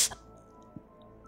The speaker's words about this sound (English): You better put your hand in that warm water there.